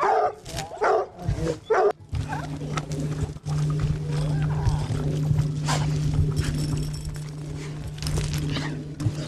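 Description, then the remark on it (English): A bluetick hound puppy barks and yelps in a quick burst of sharp calls, then keeps up a steady whining howl over a low constant hum. “And here's a little blue tick pup.”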